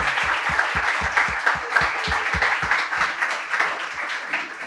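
Audience applause, a dense wash of many hands clapping steadily and fairly loudly, with a few sharper individual claps standing out in a loose rhythm before it thins slightly toward the end.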